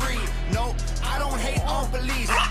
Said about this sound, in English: He needs some dogs barking in the background for sure. Maybe a little dog.